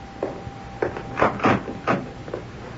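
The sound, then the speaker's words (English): A door is opened with a series of clunks and rattles, several short wooden knocks and scrapes in quick succession as the latch and door are worked. “You want me to open the door, Mom?”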